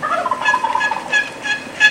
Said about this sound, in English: There's a bird roosted up in the pine. That you can see, and you're going to see him pitch out in the left side of the screen.